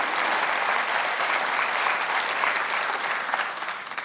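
Steady audience applause during a Vision Sunday gathering, a dense wash of many hands clapping at a constant, fairly loud level throughout, with no clear gaps or individual claps standing out.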